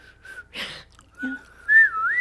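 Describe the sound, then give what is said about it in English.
A person whistles, a thin wavering tone broken by a burst of breathy air, then rising into a louder sliding note near the end. Nobody speaks. “What about whistling?”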